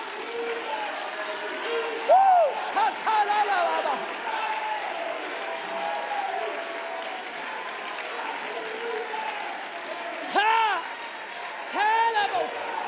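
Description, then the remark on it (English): A church audience stands and claps steadily for about thirteen seconds, a dense, continuous wash of hands, while excited voices call out praise and cheer in short bursts above the clapping. “Somebody who believes this, stand to your feet, clap your hands, and lift your voice.”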